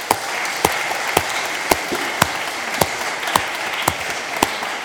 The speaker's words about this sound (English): But this was just wonderful and well done. Let's give them all of them another applause.